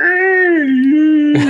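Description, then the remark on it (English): A voice imitates a pathetic, low whimper like a door creaking open: one drawn-out, wavering tone that sags slightly in pitch over a second and a half, fairly loud, ending in a breathy rasp. “Just sort of like a pathetic whimper, like a door creaking open.”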